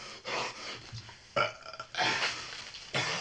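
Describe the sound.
A voice imitates burping and gagging, making several loud, rough belching bursts in quick succession with short gaps between them.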